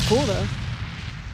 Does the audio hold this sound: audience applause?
no